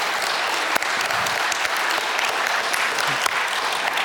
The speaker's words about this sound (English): So if you're a mom this morning, would you please stand so we can give you a round of applause? Go ahead, stand up.